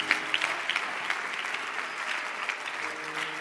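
An audience claps steadily, a dense patter of many hands sustained for several seconds at an even, moderate loudness with no voices over it.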